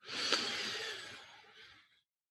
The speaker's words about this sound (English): And let's begin with three deep breaths together. Breathing in.